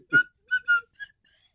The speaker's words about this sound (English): I mean, can why can't I just walk around playing slide whistles? You know, like with, you should. You know? You should always have it in your pocket ready.